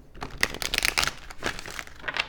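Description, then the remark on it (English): A quick burst of papery riffling and crinkling, tarot cards flicked and shuffled in a busy rhythm for a couple of seconds during a reading, with no voices. “I'm going to do a quick little shuffle here.”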